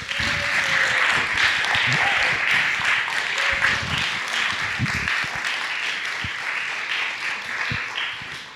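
Sustained audience applause fills the room, a dense wash of many hands clapping at steady volume for several seconds, with a few faint voices or whoops mixed in.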